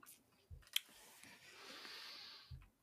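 Dice rattle and clack on a tabletop in a few quiet, scattered hits spread over a couple of seconds, with a soft hiss in the background and no voices.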